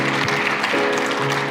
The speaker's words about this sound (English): So can we, as the angels are cheering right now, can we cheer with the angels? Cheer with the angels.